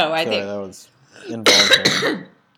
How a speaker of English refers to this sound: Apologies for the cough as well.